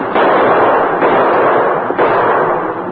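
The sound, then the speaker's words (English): Gunshots ring out over the dense, continuous roar of a cattle stampede being driven toward quicksand, with a couple of sharper bursts standing out from the loud, steady rumble. No one speaks. “Though expecting trouble, they were taken off guard by the shooting.”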